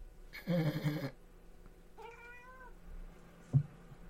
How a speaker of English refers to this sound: It's a cat. So I had to open the door. My cat was like, let me in.